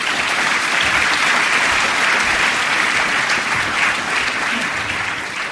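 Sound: audience applause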